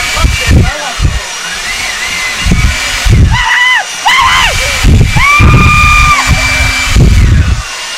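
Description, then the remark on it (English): Two voices trade loud leaf blower impressions in a leaf blower battle: breathy blowing bursts mixed with rising and falling whining hums, overlapping and competing for about eight seconds. “Leaf blower battle!”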